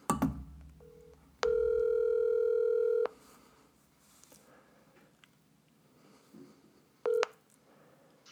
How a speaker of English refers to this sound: So let's get the phone out here and let's give him a ring.